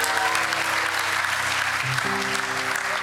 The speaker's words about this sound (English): Let's give Judah a massive round of applause.